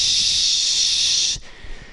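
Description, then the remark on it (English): A voice imitates a spray nozzle spraying Roundup weed killer on the grass of Trump's golf courses, with a steady, bright hissing sound held for over a second, then abruptly cut off, leaving faint low rumble. “We just fucking spray that grass.”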